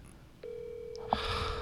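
A phone's steady electronic tone starts up and holds, with a couple of short keypad-like beeps on top, fairly clear, with a rising hiss near the end, as someone calls the same person again and again until they pick up.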